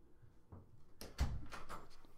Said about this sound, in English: She's scratching my door already, trying to come back in. That was less than 2 minutes.